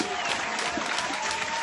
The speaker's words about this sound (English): So we'll give her a Dutch Hall round of applause, and then there you go.